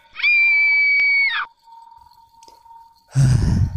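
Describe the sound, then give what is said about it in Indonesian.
A person lets out one loud, sustained, high-pitched scream lasting just over a second, followed by a faint steady hum and then a sudden burst of low rumbling noise. “Sesaat ia pun berhasil membuka pintu itu dan aku pun berteriak.”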